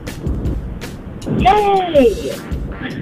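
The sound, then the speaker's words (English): Steady low rumble of a car interior on the road, heard through a phone line from a caller in her car with the phone just taken off speaker, with a brief high-pitched voice rising over the engine hum midway. “you're in your car. I am in my car.”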